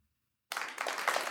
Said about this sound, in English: Can we get some clapping for COVID?